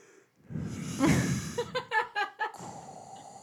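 Heavy, close-miked breathing: a long rough exhale followed by a quick series of five or six rhythmic, huffing breaths, loud and right up against the microphone with no talking.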